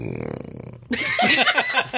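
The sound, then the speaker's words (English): A long, low, croaky belch rumbles for nearly a second, then gives way abruptly to loud, breathy, sputtering bursts, like laughter breaking out right afterward. “with that belch from Riddler Corner, we move on to our hopes and dreams”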